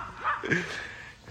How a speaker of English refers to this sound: All right, so the joys of live Instagram episodes, huh? We got barking dogs.